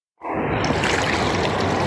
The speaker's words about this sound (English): What's the water noise?